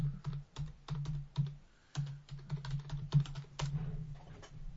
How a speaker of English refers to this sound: We can type. Wow. You go crazy with the typing. I love it.